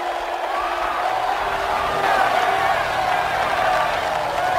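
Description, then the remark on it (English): An arena crowd in the film Robot Jox roars steadily as the robot Matsumoto 14 faces the Confederation's Kovalevsky 42, a dense wash of cheering and shouting voices that holds at a constant loud level for several seconds, with scattered whoops rising above the din. “Listen to that crowd.”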